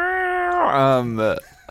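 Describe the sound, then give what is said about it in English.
A human voice mimics a cat's meow: one drawn-out, fairly loud call that slides downward in pitch, ending with a brief breathy trail. “I'm a cat.”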